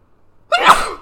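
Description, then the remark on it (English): A single sharp sneeze, part of a sneeze attack blamed on the air, bursts out after a brief quiet moment, loud and explosive with a breathy tail. “I am having a sneeze attack.”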